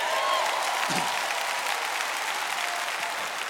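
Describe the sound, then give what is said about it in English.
A church audience claps their hands together in a dense, steady burst of applause during a sermon, holding at an even, fairly loud level for the whole stretch, with a few voices faintly mixed in. “Let all the saints clap their hands.”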